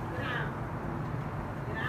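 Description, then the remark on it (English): A male cat yowls at a door in drawn-out, wavering cries, fairly faint over a low, steady background rumble, with a short call early on and another starting near the end. “He's hollering at the door like a dog. The cat? Yes.”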